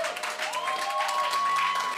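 A large audience claps steadily and shouts together, a dense, continuous wash of applause and raised voices, with a sustained organ-like tone ringing underneath throughout.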